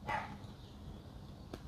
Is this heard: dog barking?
yes